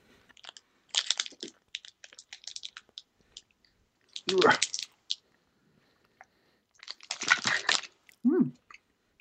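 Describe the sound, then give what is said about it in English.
Crunchy chewing of chocolate-covered ants, with irregular crisp bursts and wet clicks over several seconds, including a few louder crunching spells near the end. “Oh, well, they're crunchy.”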